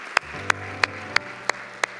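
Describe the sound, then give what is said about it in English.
Applause for three individuals in a steady unison rhythm: six sharp, even claps in about two seconds, heard over a low sustained hum, with no talking. “Can we give these three individuals today the raise our hand, a huge round of applause?”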